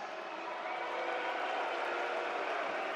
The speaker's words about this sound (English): I'm not sure why you're booing that. It's your city.